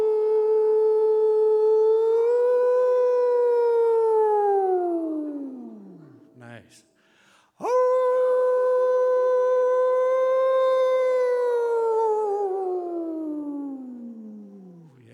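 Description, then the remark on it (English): Two long, loud human howls imitating wolves, each a sustained rich tone that slides downward and fades, separated by a brief breath and a short spoken remark. “So let's just do a little howling, and we'll just see what happens.”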